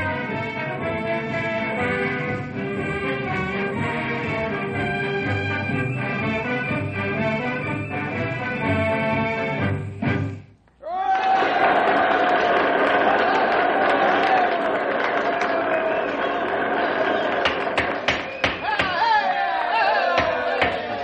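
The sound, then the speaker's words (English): A loud, full-sounding high school band, the Knotty Pine High Band, plays the Stars and Stripes March for about ten seconds, stops abruptly, then a roaring crowd of cheering students rises with a sustained tone held over it. “Right now, the Knotty Pine High Band is stirring the spirit of the occasion with the Stars and Stripes March.”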